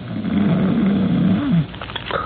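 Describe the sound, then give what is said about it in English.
A loud, rumbling snore from a big, heavily muscled, early middle-aged man lying on his back in traction in a hospital bed drags on for about a second and a half, then breaks off into a brief snuffle. No one speaks. “From beyond the curtain and the other bed in the room, from the big, heavily muscled, early middle-aged man in it, comes a rhythmic and ear-shattering snore.”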